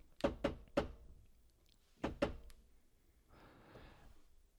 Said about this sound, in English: Very sort of syncopated knock. And then you hear one back on the other side.